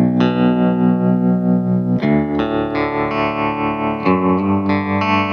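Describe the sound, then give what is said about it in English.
A low, sustained baritone electric guitar plays slow chord changes, with a gently pulsing tremolo wobble and a washy reverb tail under each chord. Loud, no voices. “And it's like, man, you just put a little bit of, you know, you put a little tremolo and a little bit of reverb on something and you're...”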